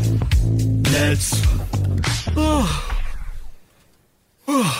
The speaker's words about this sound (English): I bet someone else yawned then. Pick the phone up and do a yawn. It's so easy.